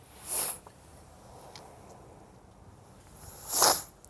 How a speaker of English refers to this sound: Excuse my sniffles today.